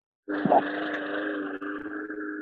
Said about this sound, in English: There's someone mowing the lawn, I think.